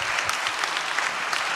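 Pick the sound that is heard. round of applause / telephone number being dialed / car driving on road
round of applause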